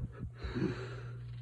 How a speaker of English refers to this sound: begins to wheeze and gasp. The king begins to do the same.